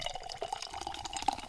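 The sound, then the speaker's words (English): Liquid sloshing and trickling in a cup of Kahlua hot chocolate, a steady watery splashing with bright bubbly sparkle and one sharper plop near the end, fairly quiet with no voices. “Sounds like you're peeing.”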